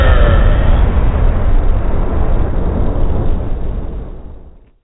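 A long, loud rumbling explosion with heavy low-end roar and crackle, sustained for several seconds before slowly fading out. No voices.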